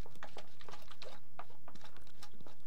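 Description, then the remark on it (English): The cap of a bottle of beige liquid being twisted open, heard as a quick run of small, crisp clicks and ticks. It is fairly quiet, with no talking. “So you're going to just open the cap there?”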